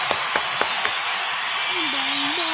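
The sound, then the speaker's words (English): A short burst of applause: four sharp, evenly spaced claps in the first second. A steady hiss and a faint low wavering tone follow. “Oh, snap. Round of applause.”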